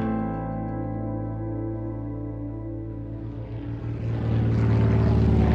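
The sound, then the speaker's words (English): A propeller plane carrying Hitler and Eckart lands: its engines drone with a steady, buzzing hum that swells into a louder, rougher roar near the end, as it touches down. No voices are heard. “The plane lands.”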